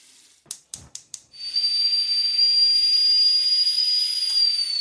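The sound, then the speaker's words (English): Four quick sharp clicks, then a loud, steady rushing hiss with a thin high whistling tone as a kettle is boiled, continuing unbroken to the end with no voices. “Right, so if we cut here, I'll go and boil the kettle and do that bit.”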